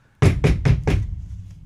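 Four quick, solid knocks on a door in an even rhythm, fairly loud, as someone delivers a package, followed by a short fading resonance and quiet room tone.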